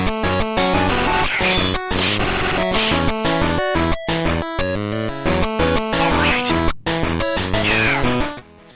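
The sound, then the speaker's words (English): Harsh, heavily distorted audio from a Wolverine game on Game Boy Color: crunchy, clipped "all right" and "yeah" voice samples chopped into short bursts over loud, buzzy chiptune music that runs almost without pause for about nine seconds. “Very heavy distortion because this is on Game Boy Color.”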